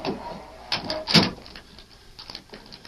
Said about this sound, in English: When I didn't answer, the door opened real fast and somebody came in the room. But it was so dark, I couldn't see.